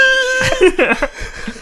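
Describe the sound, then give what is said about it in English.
A steady high tone hums briefly, then a voice lets out a shrill, wavering screech with sharp pitch sweeps, imitating a falcon's cry, before trailing off into rougher vocal noise. “Is that his falcon screech?”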